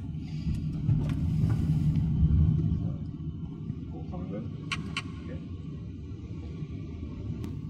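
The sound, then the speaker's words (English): Steady low rumble of a car interior while riding, constant and enveloping, swelling slightly early on, with a few faint clicks and rattles over the top. “Oh, and we're back in the car park. Good.”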